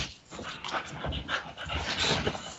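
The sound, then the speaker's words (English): Jinx, a female pet dog, pants in quick, breathy bursts, with soft high whimpers mixed in, continuing steadily for a couple of seconds with no one talking. “Jason's dog making a guest appearance on the podcast.”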